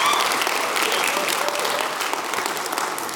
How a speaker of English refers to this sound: And graduates, how about clapping and applauding for the people who helped get you here today, right? They did it. Yeah.